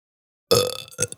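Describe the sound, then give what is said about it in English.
A single throaty burp erupts after a moment of silence, loud at first and then trailing off with a short guttural tail. “That wasn't as good as my burp earlier.”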